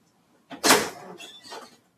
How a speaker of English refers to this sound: So that was the door.